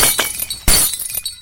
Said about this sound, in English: This time she screamed so loud that the window shattered and some of the light bulbs exploded.